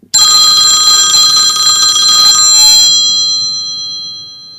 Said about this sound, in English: Oh, there he is. Phone's ringing.